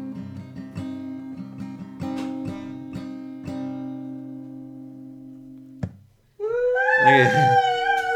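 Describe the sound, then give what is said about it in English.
Strummed guitar chords, slightly out of tune, ring out for several seconds and fade, then after a brief gap dogs break into loud howling with wavering, sliding pitches. “I tried to keep the dogs distracted with chicken and a biscuit. That's okay. They added to it.”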